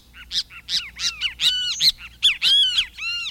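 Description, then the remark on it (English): A Great Kiskadee, a flycatcher, calls loudly, a run of harsh, rising-and-falling squawking notes repeated in quick, uneven bursts with no one talking. “Great Kiskadee: Unconventional Flycatcher”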